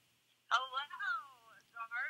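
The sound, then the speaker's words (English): A phone call from Britt Baker comes through on speakerphone held up to the mic: after a short silence, a thin, tinny voice sounds from the phone's small speaker in a few brief bursts, moderately loud. “Because I'm getting a phone call from Britt Baker.”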